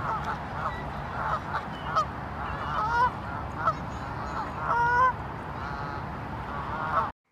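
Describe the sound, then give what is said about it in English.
A flock of Canada geese (Branta canadensis) honking over and over, with overlapping calls that swell and fade against a steady background hiss, fairly loud throughout. “This episode, our bird spotlight is on the Canada goose.”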